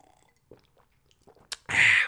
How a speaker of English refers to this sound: Quick water break. Sip of water, balls.